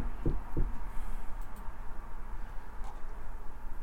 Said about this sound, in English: And if you're safe, just knock on the door. You don't have to open it.